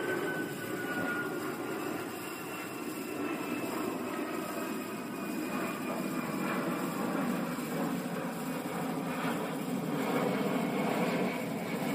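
A low-flying airliner coming in to land at Manchester Airport roars steadily overhead as its landing gear lowers, a thin high-pitched whine gliding slowly downward above the broad engine rumble for the whole stretch, with no voices.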